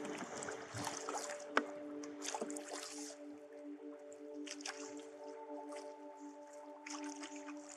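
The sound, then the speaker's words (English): Sloshing of a paddle moving a 12-foot canoe through river water among water lilies and reeds in autumn, with irregular splashes and dripping between strokes, over a steady low hum in the background. “After 10 minutes of paddling among the gorgeous water lilies and reeds”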